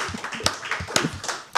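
A short burst of applause: a few pairs of hands clapping in an uneven, overlapping rhythm, with sharp crisp slaps at moderate loudness and no voices.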